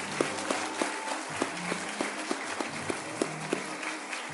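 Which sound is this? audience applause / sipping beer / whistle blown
audience applause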